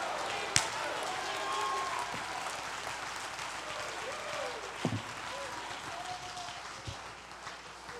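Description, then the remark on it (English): A crowd, told by a preacher to jump to their feet, clap and shout "it's not over yet", claps steadily in a dense, continuous wash of applause, with scattered shouts and whoops rising above it and a few sharper accents along the way. “If you believe it, jump to your feet and clap your hands and shout, it's not over yet.”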